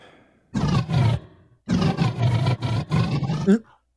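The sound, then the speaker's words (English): A person growls and roars like a wild beast in two loud bursts, the second longer and rougher, ending in a rising snarl. “Your growling.”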